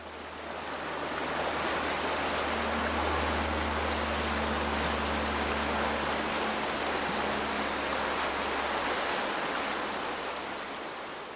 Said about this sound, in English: like the stone sticking out of the river, the torrent pounds upon the surface, constantly.